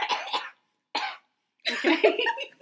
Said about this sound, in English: Let me get my cough out on this one.